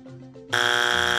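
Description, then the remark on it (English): A loud, harsh electronic game show buzzer marking a wrong answer as a strike blares suddenly and holds steady, a dense, rasping tone rich in harmonics, preceded by a brief murmur of low voices. “Oh, strike one.”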